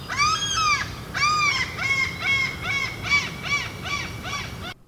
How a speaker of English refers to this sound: Oh my goodness. Okay, and birds too.